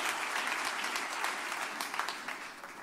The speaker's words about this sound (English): Clap your hands tonight as you're being seated.